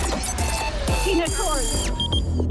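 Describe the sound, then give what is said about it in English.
A quiz time-up buzzer blares in a shrill, sustained electronic tone, partly overlapped by excited voices shouting at the same moment. “What did you shout there right on the buzzer?”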